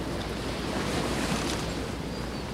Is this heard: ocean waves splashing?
yes